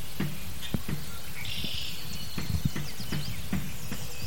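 A turkey pecks at the door of a hut: about ten sharp, irregular knocking taps, some in quick pairs, over a steady outdoor hiss with faint high bird chirps.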